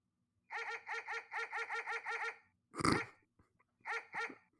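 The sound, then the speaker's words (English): Excited dogs yip and bark in a rapid string of high, whiny barks, then a brief scuffle and two more sharp yaps. No one speaks. “I've got some dogs here who are pretty excited because they helped me keep the trophy here”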